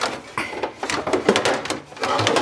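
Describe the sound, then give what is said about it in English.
A kitchen drawer holding many sheet pans slides open and a sheet pan is pulled out, with a run of clattering metal clanks and scraping rattles, fairly loud and irregular, without any talking. “Okay, so I'm going to get my sheet pan. I have a lot of sheet pans in this drawer.”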